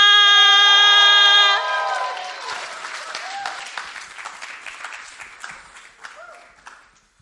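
An audience claps steadily in a dense, crackling burst of applause that slowly thins and fades over several seconds, opening with a loud, sustained high-pitched tone before the clapping takes over.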